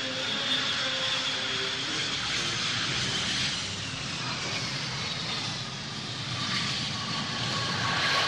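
A loud, steady jet engine roar with a high turbine whine, like an airplane idling or taxiing at Quincy International Airport (Quippy), continuous for the whole stretch with no voices.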